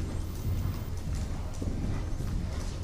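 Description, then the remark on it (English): Steady clip-clop of horse hooves trotting on a hard surface, a continuous rhythmic beat at moderate volume with some background rumble and no voices. “back to your trot.”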